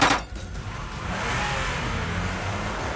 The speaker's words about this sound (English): he's in his car and he's ambushed. Two people jump out and spray his car with bullets.